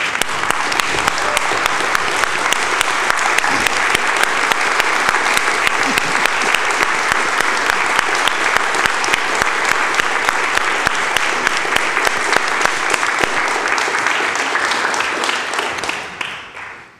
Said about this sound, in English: if you'd be willing to rise in body or in spirit or ways that are meaningful for you, and cheer Angela on in thanks